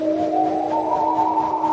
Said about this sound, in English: Then Henry heard some whistling and some wailing. Oh, no! That's not a cow in a field. It must be the flatbeds of fear.